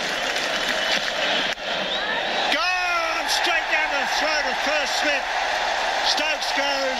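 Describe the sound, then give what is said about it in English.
A crowd of about 90,000 at the MCG cricket stadium roars and murmurs continuously, with a sudden swell of cheering and shouting about two and a half seconds in as Mitch Johnson gets Ben Stokes out at the 2013 Boxing Day Test, voices rising in repeated whoops over the dense crowd noise. “The crowd will get behind him. You can hear them starting to clap.”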